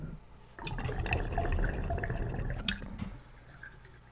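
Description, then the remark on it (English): Water suddenly rushes and swirls for a few seconds in a glass pipe as its valve opens, a gurgling, tornado-like pour draining into the bottom part with bubbly splashes, then tapers off into quieter trickling. “when the valve opens, after you stop pulling on it, it'll do a faster tornado and just pour the water into the bottom part”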